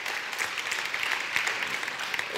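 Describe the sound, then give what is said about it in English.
An audience applauds the guest author of the Jesus Storybook Bible, a dense, even wash of many hands clapping at once with no voices over it, holding a constant moderate level throughout. “Now, Sally, go ahead, give her an applause for that.”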